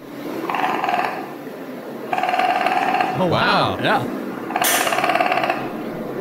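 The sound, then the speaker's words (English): A pet raccoon whines for food or treats with a rapid, buzzing, rattling trill, repeated in three bursts of about a second each. Brief exclamations from a person fall between the bursts. “But this owner of a pet raccoon, he recorded what his raccoon sounds like when it's like whining for food or treats or whatever.”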